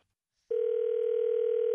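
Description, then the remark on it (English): After a brief silence, a steady telephone dial tone starts abruptly when a cell phone drops the call, and holds at a constant, fairly loud pitch with no breaks. “Sounds like your cell phone dropped the call.”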